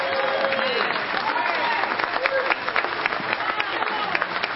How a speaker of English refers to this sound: Come on, give a Lord a clap.